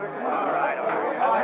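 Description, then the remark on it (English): A dense wash of overlapping crowd chatter as crowds of people bear down on a police station and mill round its entrance on First Street: many voices murmuring and calling at once in a steady, loud, restless din with no single voice standing out. “Crowds of imprudent people bear down on the police station, mill round the entrance on First Street.”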